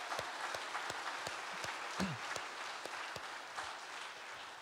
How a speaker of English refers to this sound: Just got to say, why don't we give a big round of applause to the Northfield Lady North softball team for winning the state championship.